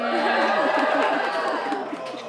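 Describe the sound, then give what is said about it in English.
A crowd of voices boos together in a loud, sustained wash of overlapping low tones that holds steady for a couple of seconds, with a few livelier voices mixed in. “We'll take the booing as like a good thing.”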